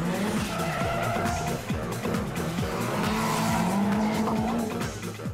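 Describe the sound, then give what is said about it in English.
A drift car skids through a drift with a loud, sustained tire squeal over a revving engine, pitch sliding up and down as it slides, continuous with no talking. “Yeah, I like adrenaline and stuff, I guess, but I just love drifting. I just love sliding the car.”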